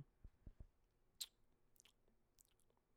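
Chewing and mouth sounds of someone eating oatmeal, with a few soft low thumps followed by scattered wet clicks and smacks spread across a few seconds; no one speaks.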